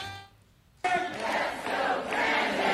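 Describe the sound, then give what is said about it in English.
A short steady tone cuts off, then a loud crowd suddenly erupts into sustained chanting and cheering of "Let's go, Brandon", a dense wall of many voices that holds at full volume to the end. “Dude, but just in time for the holiday season, there's a new cheer going around also.”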